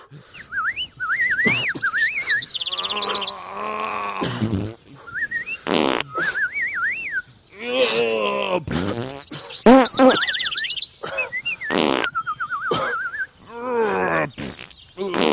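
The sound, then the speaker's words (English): A voice imitates a bird relieving itself, mixing squeaky chirps and warbling whistles with loud, wet, sputtering fart noises in a continuous close-up burst of mimicry. “You know, taking a giant bird dump like one of my uncles or something.”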